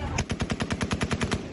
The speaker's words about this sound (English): This morning, more chaos as gunfire rang out.